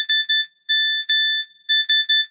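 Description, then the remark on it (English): The old Nokia SMS text message tone: a bright, steady electronic beep pulsed in a Morse-like pattern of short, long, then short bursts, loud and clear with no talking. “But what this is like when you actually got like an SMS text message, it would do this Morse code BB sound.”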